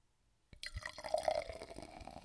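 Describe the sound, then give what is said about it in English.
Champagne being poured into a glass: after a brief silence, a steady fizzing pour begins, its pitch rising slightly as the glass fills, with no talking. “Hold on, let me get a little refill. Let's see if I can get the mic to pick this up.”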